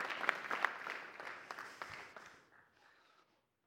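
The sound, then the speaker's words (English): A crowd applauds with dense, overlapping claps, a few sharp ones standing out early, then the clapping thins and fades to quiet after about three seconds. “Now we can clap and say amen.”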